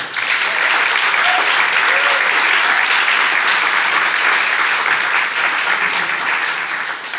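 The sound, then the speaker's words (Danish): Loud, sustained applause from a large live studio audience at a live radio drama event, clapping for the participants on stage; a dense steady roar of clapping with a few whoops and cheers rising over it. “Det var både en hånd og noget huhu, og så videre.”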